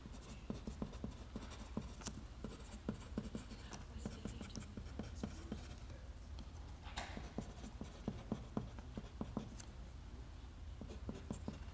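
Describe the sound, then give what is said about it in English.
Quiet scratching of a pencil or pen on paper, with quick irregular strokes and taps running throughout, while a faint murmur of voices sits in the background. “I brought a piece of paper for this reason and then left the pencil.”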